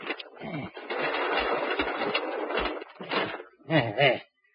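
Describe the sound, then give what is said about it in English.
Heavy garage doors rumble and scrape as two men drag them shut with a car inside, ending in a couple of dull thumps, with a brief voice near the end. “Come into the garage, quick. Okay. Whose car you got in there? You'll see. Come inside and help me close these doors.”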